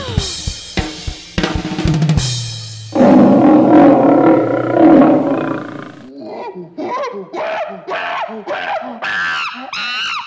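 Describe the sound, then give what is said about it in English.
A big cat lets out a long, loud, rumbling roar, followed by a run of short, rhythmic grunting cries, with sharp animal screeches at the start. “We got monkeys, lions, giraffes, snakes, all kinds of stuff.”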